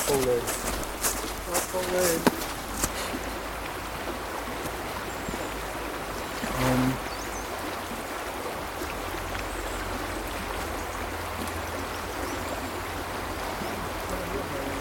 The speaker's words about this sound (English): Here we are by the river here. Let's get some nice ambiance. You can skim a stone if you want.